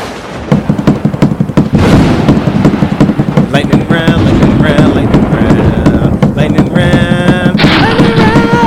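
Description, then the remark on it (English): Loud, rapid banging on a table during a lightning round game, a dense flurry of sharp thumps hammering away almost nonstop, with raised voices shouting over the racket. “You're gonna break the table.”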